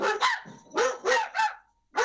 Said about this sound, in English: Your dogs disagree with you by the sounds of it. That's because somebody knocked on the door.